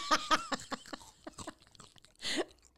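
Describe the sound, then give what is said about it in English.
Crisp crunching and wet chewing of crackers and cheese, with irregular bites and mouth noises, ending in a louder crunchy burst near the end. “We're having some crackers and cheese.”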